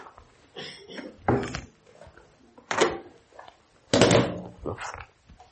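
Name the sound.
chair being moved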